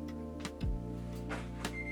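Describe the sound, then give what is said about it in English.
A timer goes off: a thin, steady high-pitched electronic beep starts near the end, cutting through a dense background of humming tones and a few short clattering bursts. “Oh, that's the timer.”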